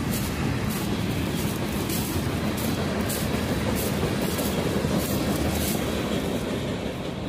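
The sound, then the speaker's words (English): A train rumbles past in a loud, steady roar, while footsteps crunch through dry leaves at an even walking pace over the top of it. No one speaks. “They're walking through leaves, and there's a train. And there's a train in the background.”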